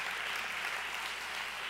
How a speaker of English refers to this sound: So if you're excited for that, I heard a few, and you want to clap, go ahead and clap.